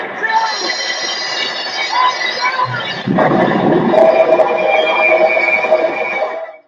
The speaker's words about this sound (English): Cecil B. DeMille's The Greatest Show on Earth, a dazzling spectacle that ends with a huge train crash after a botched robbery, which is totally inappropriate for your young child to see.